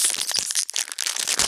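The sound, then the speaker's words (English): A Modern Masters booster pack of trading cards being torn open: a crisp, crinkly foil rip with dense bursts of crackling and tearing, steady and fairly loud for about a second and a half, with no talking. “Okay, that great pack sound, pack tearing sound.”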